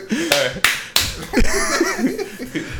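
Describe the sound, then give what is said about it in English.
Three sharp hand claps, made to sync a video recording, land in quick, even succession, loud, then voices begin talking underneath and carry on after them. “give me like 3 claps.”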